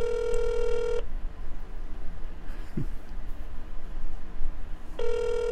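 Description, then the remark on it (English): A telephone ringback tone sounds twice over a phone line as a call is placed to Sister Terrell, one steady buzzy ring at the start and another about four seconds later, with faint line hiss in between. “Hear the phone ringing? Hear that? It's going to ring again.”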